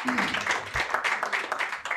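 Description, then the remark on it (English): A crowd at a one-year birthday anniversary applauds a man with a steady, dense patter of clapping, mixed with indistinct cheering voices, sustained and fairly loud throughout. “Clap it up for him, man.”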